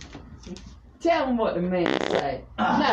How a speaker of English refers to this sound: Stop farting.